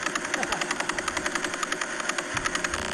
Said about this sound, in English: That's the Crab Pulsar. That just sounds like a generator. Sounds like it's blowing up... you know, like a burger van generator. Yeah, burger van or like a bouncy castle in someone's back garden. It's rotating 30 times a second.